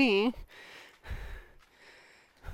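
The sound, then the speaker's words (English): Heavy, labored breathing of people climbing stairs: a brief voiced sound, then a few loud, noisy exhales and gasps in an uneven rhythm. “Listen to us breathing. Heavy breathing up the stairs.”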